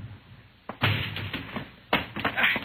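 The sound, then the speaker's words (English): A door is forced and broken down: a few heavy, loud thuds and crashing impacts, each followed by rattling and splintering debris, with no talking. “All right, Juan. Break down the door.”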